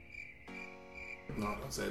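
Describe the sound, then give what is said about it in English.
A steady, high-pitched cricket chirping sound effect runs continuously through the short clip, with a brief voice-like tone and some louder rustling noise layered over it toward the end. “Our first cricket sounds of the day.”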